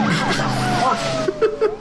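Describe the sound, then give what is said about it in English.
Several police sirens wail and sweep up and down at once, overlapping over the rumble of cars driving by, loud throughout. “It's like the fucking Blues Brothers fucking chasing with all the cop cars.”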